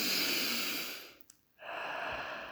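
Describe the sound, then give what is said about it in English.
Heavy, labored breathing: a long rough inhale, a brief pause, then a strained exhale with a snorting, nasal quality. No one speaks. “Sorry, I'm having a bit of difficulty with my breathing.”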